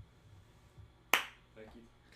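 One sharp hand clap rings out, a sudden crisp burst that fades quickly, with faint voice murmurs after it and low background rumble around it.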